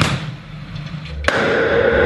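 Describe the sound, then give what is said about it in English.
A sudden, sharp blast cuts through low background rumble, followed by a sustained broad roar that lingers to the end: one distinct explosion scuttling the warship HMCS Annapolis off the coast of Gambier Island in April 2015, sinking it 35 meters underwater. No voices. “In April 2015, this explosion opened up a new window for divers off the coast of Gambier Island, the warship HMCS Annapolis sinking to its final resting place 35 meters underwater.”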